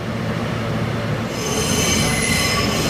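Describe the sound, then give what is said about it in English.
Wheels of a Brooklyn-bound F local subway train running via the E line squeal steadily against the rails between 7th Avenue and 50th Street, a loud, continuous high-pitched screech over a low rumbling hum that intensifies midway through. “This is a Brooklyn-bound F local train via the E line.”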